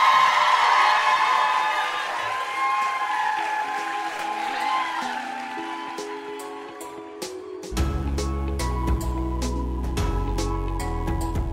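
An audience at a live stage show claps and cheers for a departing guest host, with scattered whoops over the steady applause, which fades as a beat-driven music track with a heavy bass line takes over for the last few seconds.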